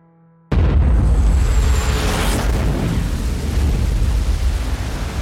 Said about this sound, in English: At 3 minutes past 7 o'clock, night turns to day as the sky is lit up by an enormous fireball. The very earth beneath Lockerbie shakes. The blast hits 1.6 on the Richter scale. It can be felt several miles away.